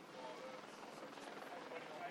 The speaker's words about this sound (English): Helicopter above.